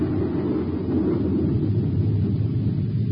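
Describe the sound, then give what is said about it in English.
A loud, thundering explosion effect rolls on as a deep, continuous rumble, a steady low roar that holds its strength for several seconds without fading or any voices. “A prize that's going to rock you like a thundering explosion.”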